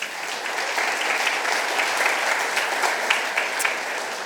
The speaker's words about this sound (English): We've got an amazing kids team, haven't we? Should we give them a round of applause?